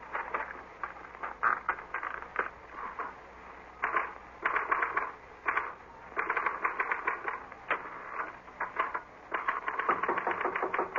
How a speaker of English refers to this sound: This is a note I want you to copy onto your typewriter.